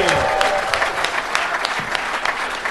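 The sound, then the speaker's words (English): An audience at a live show in Kilkenny applauds Adam Hills and David O'Doherty, a dense wash of many hands clapping at a constant loud level with brief sharper claps poking through, and a faint voice briefly audible at the start. “A round of applause, please, for Adam Hills and David O'Doherty.”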